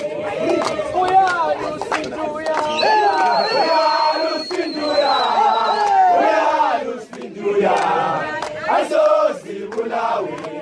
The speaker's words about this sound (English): And they turned up to this opening ceremony, singing, dancing, clapping, laughing. They're just delighted to be here, given all they went through to get here.